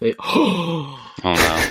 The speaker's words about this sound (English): Oh, no. That was a genuine gasp of excitement.